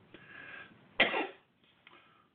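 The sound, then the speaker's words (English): A single sharp cough from a person with an allergy problem bursts out, followed by a brief rough exhale, with quieter breathy rustling before and after it. “Pardon my cough, have a little bit of allergy problem here.”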